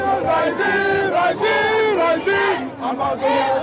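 protest crowd shouting

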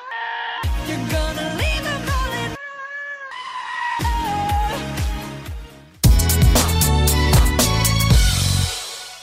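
goats bleating

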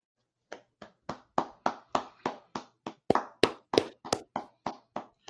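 hands clapping

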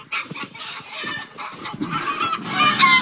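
upset chickens clucking

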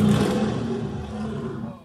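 bear roar sound effect

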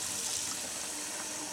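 running tap water

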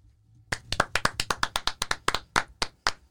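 hand clapping

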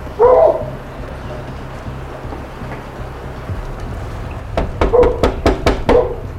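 dog barking

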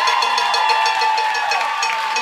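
audience cheering and applauding

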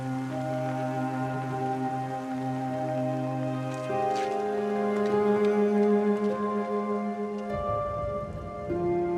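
rain falling

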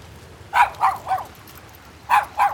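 dog barking

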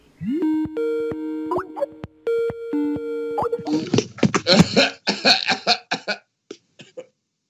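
cough

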